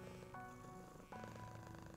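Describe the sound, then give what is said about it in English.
A pet cat purrs steadily, a continuous low rumbling drone with a slight pulsing rhythm, loud and uninterrupted with no voices over it. “It is a known fact that the sound of the purring can lower your heart rate, lower your blood pressure, reduce anxiety, and put you in a state of total relaxation.”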